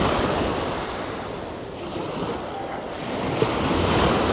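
Steady ocean surf rushes and breaks against the shore, a broad continuous wash of noise that swells slightly near the end, with some wind buffeting the microphone and no voices.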